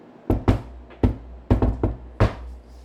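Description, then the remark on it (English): A knock password on a door: a deliberate, rhythmic pattern of about seven sharp knocks, grouped with uneven pauses like a secret code, clear with no talking. “What's the knock password? Why don't you do it? What's a knock? Yeah, do it. Do the knock password.”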